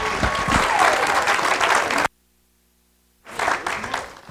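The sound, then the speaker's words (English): A church audience applauds a visiting pastor as he comes up. Dense, steady clapping fills the opening two seconds, cuts to near silence for over a second, then resumes just as loudly until the end. “Give him a hand as he comes.”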